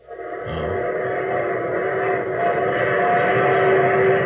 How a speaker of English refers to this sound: There's my train. The train that's taken me to my wedding,